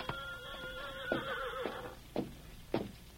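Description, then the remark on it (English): A horse neighs, a shrill, wavering whinny lasting over a second, followed by a few separate short thumps or snorts spaced out afterward, as horses are left outside a house in town. No one speaks. “We leave horses here.”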